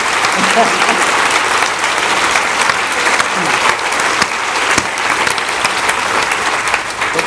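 A sustained round of audience applause for a guest's answer, many hands clapping steadily and loudly for several seconds, a dense crackling wash of sound without pause.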